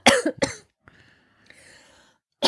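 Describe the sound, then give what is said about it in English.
A woman coughs twice in quick, harsh bursts, followed by a quiet pause with faint breathing before another cough begins. “She's coughing to death now.”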